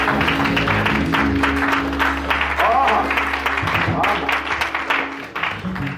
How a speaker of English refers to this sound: Come on, everybody say, give the Lord a hand clap while you clap.